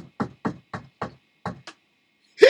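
A quick series of about six firm, evenly spaced knocks on a man's door, followed after a short pause by a louder, brighter burst of sound.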